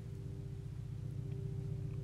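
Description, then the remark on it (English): A steady, low engine drone of an airplane passing outside, a constant rumble with a faint hum layered on top, holding even for the whole stretch with no voices. “I'm looking at this audio app, this recording, this memo app, and heck, if I'm quiet, y'all probably hear some airplane outside.”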